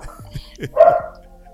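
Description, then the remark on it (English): A dog lets out one loud bark, after a couple of quieter yips or murmurs, and the sound then fades into the low background. “So, what up, dog? Literally, what up, dog? He always likes to make an appearance.”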